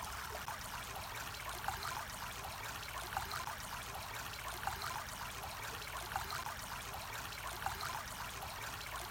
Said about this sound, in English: Look at the stream and notice the sunlight sparkling on the water. Listen to the sound the water makes as it tumbles over the stones, the little rocks.